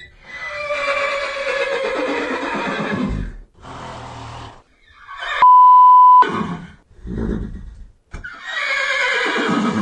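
horse neighing and whinnying

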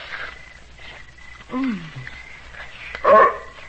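dog barking and whimpering

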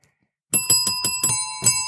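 bell ringing

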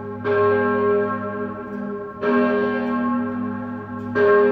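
church bell tolling

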